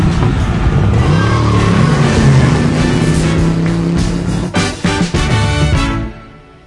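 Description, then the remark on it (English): A car engine revs loudly and accelerates in a Hardee's commercial, its roar climbing in pitch and staying continuous before cutting off abruptly at the end. No voices are heard. “But Daddy, I just bought that car. Buckle up, son.”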